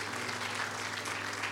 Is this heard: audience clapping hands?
yes